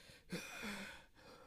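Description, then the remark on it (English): Heavy, ragged breathing: long noisy inhales and exhales broken by brief pauses, with no words spoken. “And he says one last thing as he's breathing heavily.”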